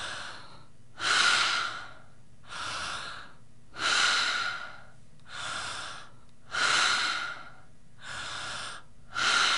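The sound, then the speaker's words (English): Slow, deep breaths drawn in and pushed out in a steady rhythm during a guided set of ten breaths, about three full cycles heard. The inhales are louder and sharper than the softer exhales, with no talking. “And let's do these 10 breaths together.”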